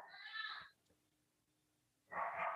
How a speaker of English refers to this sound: Well, the dogs are acting up. Your assistance is needed.